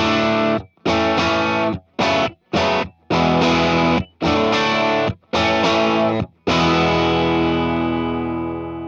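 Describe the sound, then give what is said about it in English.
A close-miked, heavily distorted electric guitar amp, recorded with a 57 microphone pointed straight at the speaker but off-center toward its outer edge rather than the center cone, plays about eight loud, thick chords in a stop-start rhythm with brief silences between them; the last chord rings out and slowly fades. “That's just the 57 pointing straight at the speaker, but off-centered, closer to the, you know, the outside of the speaker as opposed to the center cone.”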